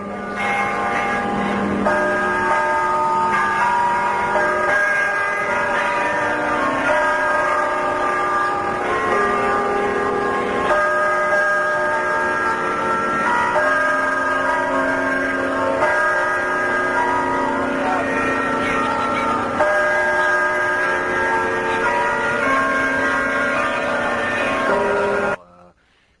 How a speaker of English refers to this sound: Students scramble to and from classes, while high above the campus, a lonely-sounding bell rings out the noon hour. But it's soon joined by the other bells in the carillon of the campanile, James Safer Tower.